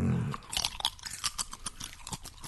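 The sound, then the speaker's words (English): Crisp crunching as someone chews a salty snack, with a rapid series of bright, irregular bites and mouth sounds over a couple of seconds, no talking. “Will ASMR some fucking crunchy, chewy noises.”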